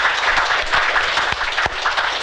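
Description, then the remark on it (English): A crowd applauds steadily for local politicians, a dense wash of many hands clapping at once with a few sharper individual claps popping out, sustained and fairly loud throughout. “So how about a round of applause for our local politicians?”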